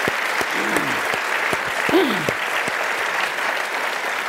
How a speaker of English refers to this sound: So it's great for me to be the guy who opened the door for Starbucks going into urban America. And we should clap for that, because that's a great thing.